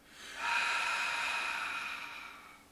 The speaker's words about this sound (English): And we'll begin by breathing out through the mouth all the way. So just breathe out the mouth. And breathe out one more time, fully compressing your core.